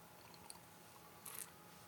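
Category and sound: food or drink, sipping beer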